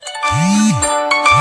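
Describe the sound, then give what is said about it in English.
An electronic mobile phone ringtone plays loudly for a call that came through despite do-not-disturb mode, with a sustained synthetic melody over a rising and falling low tone that repeats, with no talking over it. “Wait a second, my phone is ringing.”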